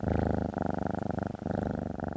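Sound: cat purring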